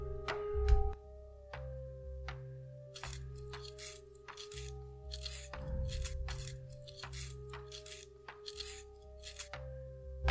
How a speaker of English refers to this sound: Okay, while you're doing that, I need to sharpen a pencil for you. I'm scared. Are you gonna do anything but sharpen that pencil?